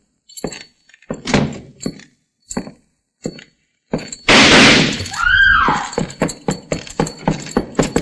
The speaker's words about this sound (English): He stepped out of the parlor right after I closed the door, shooting the place to pieces. Who? Where? He's gone now. He went through that window at the end of the hall.